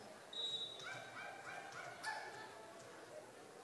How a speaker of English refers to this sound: I think there's a dog loose out there on the court.